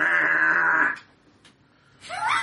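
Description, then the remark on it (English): A goat bleats loudly, a long steady cry lasting about a second, then after a brief quiet pause a second bleat begins, rising sharply in pitch. “A dire goat.”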